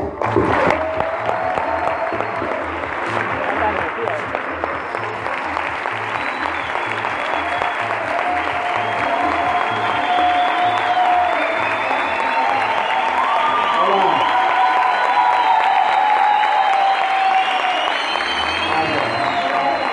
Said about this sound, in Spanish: No queremos robarle más tiempo, recibimos con un muy fuerte aplauso a los empresarios